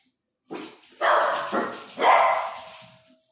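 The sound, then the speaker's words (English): Guard dogs bark loudly at someone at the door, four sharp, overlapping barks in quick succession that ring out and fade, with no one speaking. “The ferocious guard dogs are all over it.”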